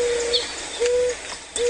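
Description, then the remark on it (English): A mourning dove coos in three soft, low, drawn-out notes at an even pace, heard alone over a steady hiss of background noise. “It's called a morning dove.”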